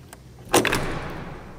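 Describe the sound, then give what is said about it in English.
A heavy door swings shut with a single solid thud, followed by a lingering rumble and faint scraping as it settles. The sound is fairly loud, with no talking. “Just let me close this ear door behind us so the light don't get out.”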